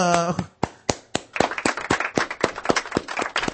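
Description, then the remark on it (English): A short vocal sound gives way to hand clapping, starting as a few slow, sharp claps and thickening into a steady patter of light applause from several people. “That's a we'll give you some polite applause for that bullshit.”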